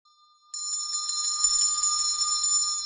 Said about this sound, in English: deep in his books, he vaguely hears the dinner bell being rung in the workhouse. He looks up as if he had heard it, but never focuses on the actual scene. The warder of the poorhouse stands in a pool of light at the far left, slowly ringing a bell.